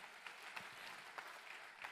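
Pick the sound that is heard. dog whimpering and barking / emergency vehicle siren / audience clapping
audience clapping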